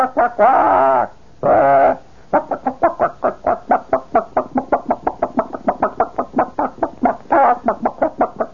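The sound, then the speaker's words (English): A man's voice mimics a chicken walking around a yard and pecking at gravel. It opens with two drawn-out clucking calls, then a long run of quick, evenly spaced pecking clucks, loud and rhythmic, with another short cluck call near the end. “That is a chicken who is just walking around the yard and is pecking away at the gravel.”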